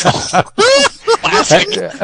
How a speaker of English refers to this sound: Clear my throat.